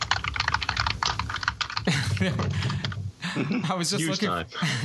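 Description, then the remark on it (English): Rapid, clunky computer keyboard typing, standing in for a typewriter sound, clatters in a dense burst for about two seconds, fairly loud, before people start talking and the keystrokes give way to speech. “if we misplace the typewriter sound, he can clunk on his keyboards.”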